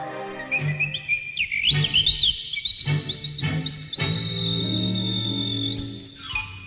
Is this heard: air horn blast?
no